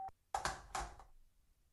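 A short electronic call-waiting beep, from someone calling in on the other line, sounds over a phone line, then two louder, buzzier tone bursts follow in quick succession before the line falls quiet. No one speaks.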